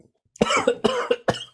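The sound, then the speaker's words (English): A man coughs in a quick series of harsh, wet bursts, about four in a row, loud, with no other sounds around them. “He's coughing up his desperado.”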